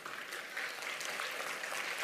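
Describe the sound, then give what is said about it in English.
A crowd at a service claps steadily, a dense patter of many hands with no pauses, holding an even loudness throughout. “Don't clap. Don't clap. We're not done.”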